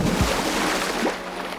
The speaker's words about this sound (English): Everybody watched nervously as Cranky turned his crane arm and gently lowered the whale into the water with a sploosh.